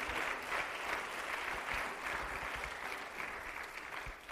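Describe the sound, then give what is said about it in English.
An audience claps their hands in praise to the Lord for their pastor on his fifth-year pastoral anniversary, in sustained, dense applause, many overlapping claps blending into a steady wash of sound at a fairly constant level with no voices. “Give the Lord a hand clap of praise for your pastor.”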